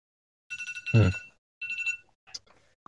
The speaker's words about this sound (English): Oh gosh, you getting a phone call or what?